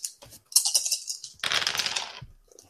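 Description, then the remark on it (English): Dice rolled for a finesse check in a game clatter across a hard surface: a quick run of sharp clicks and knocks, then a longer, busy rattle as they tumble and settle, with no talking. “All right, roll me another finesse check to see if you can.”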